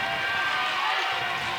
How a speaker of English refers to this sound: And you can hear the Spartan crowd getting into it.